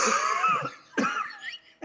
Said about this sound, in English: Sorry, I had a leprechaun in my throat there. I was trying to cough that out.